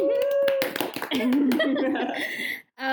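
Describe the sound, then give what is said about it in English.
A few people clap together in a quick, brisk burst of applause lasting a couple of seconds, with voices cheering and talking over the clapping. “Everyone applause.”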